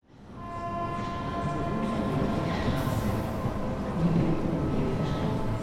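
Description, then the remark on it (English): A passenger train, the Eurocity 196, rolls along the rails with a steady, loud rumble, sustained metallic tones ringing above the clatter throughout. No one speaks. “Police on the Eurocity 196 train are always on guard, extra vigilant and extra suspicious.”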